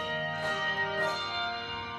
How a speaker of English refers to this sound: And now, listeners, a real treat, a performance by ….